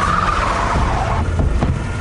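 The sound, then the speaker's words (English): A Humvee peels away with a sustained tire screech, engine roaring loudly, the squeal sliding downward before a couple of sharp thumps as it drives off. “We'll take one of the Humvees.”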